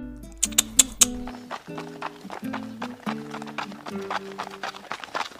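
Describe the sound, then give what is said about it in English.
Hooves of a horse ridden by a cowboy clip-clop along a trail in a steady, rhythmic gait, each hoofbeat sharp and distinct, with sustained musical tones underneath. “My, he's a handsome fellow. The horse?”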